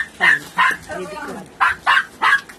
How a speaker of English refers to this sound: And I need to check and see what she's barking at. Because she's... Is somebody out there?